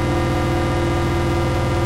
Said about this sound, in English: But yeah, so now we get this slow kind of evolving drone as that LFO interacts with the speed of the swamp. And of course, I've also got the mimeophone and the Desmodus on the end for some reverb sounds.